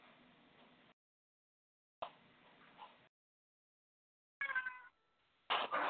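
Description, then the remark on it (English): A cat at a screen door meows a couple of times, soft, in short separate bursts with quiet gaps between them, wanting the door opened, with no talking. “Oh, I just heard a kitty.”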